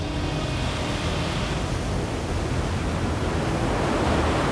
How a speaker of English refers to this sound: At the rear of Pharaoh's armies, the split halves of the Red Sea fell. The walls of water came barreling down, crushing the Egyptian soldiers and horses with incredible force. Pharaoh watched as the sea swallowed his army.